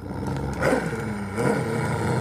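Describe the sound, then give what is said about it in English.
A mangy dog growls low and rough without pause, the rumbling snarl swelling louder twice over a couple of seconds, with no voices present. “That is a manger dog.”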